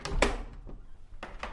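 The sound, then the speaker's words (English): A door into a hot, windowless room stacked with tanks of venomous snakes opens with a handful of thuds and rattling knocks, a solid clunk at the start and another pair near the end, over a low hum. “Well, let's go in through the door.”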